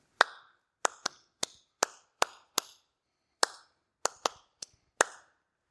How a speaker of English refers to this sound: But if I clap something like this